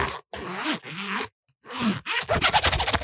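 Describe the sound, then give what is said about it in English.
A zipper on a tool roll bag is pulled in several quick strokes, each a bright ripping rasp, ending in a rapid ratcheting run of teeth clicking. “Listen to that zipper action. Did you hear it?”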